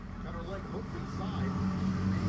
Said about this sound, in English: Hey, another truck. Hi, truck.